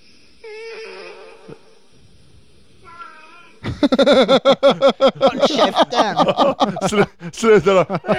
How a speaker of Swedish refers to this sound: Det bästa är snart i bakgrunden så hör man en annan katt som blir irriterad på den.